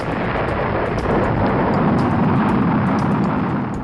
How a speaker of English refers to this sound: The space shuttle had 2 booster rockets. 5, 4, 3, 2, 1, fire!